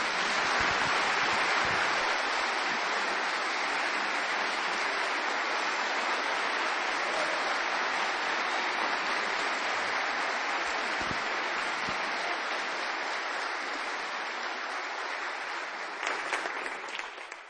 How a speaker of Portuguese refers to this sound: If you would, let's give them a big hand clap. Vamos aplaudir todos esses que serviram.